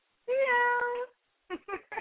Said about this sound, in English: Kitty cat.